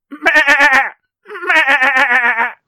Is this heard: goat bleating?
yes